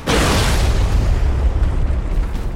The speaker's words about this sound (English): Some kind of a weapon exploding within the demonic legions. It opened slowly, like the whispered petals of a towering flower, blossoming into a thunderhead that collapsed both the memory and the dream.